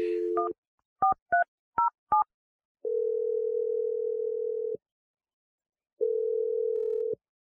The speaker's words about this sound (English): I'm dialing the number right now.